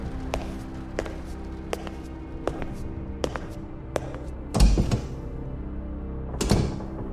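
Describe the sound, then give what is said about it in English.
Steady footsteps tap along a hard floor in an echoing hallway, about one per second, broken by two louder thuds like a door being opened and bumping. No one speaks. “he heard Vorin's door open. His footsteps echoed in the hallway.”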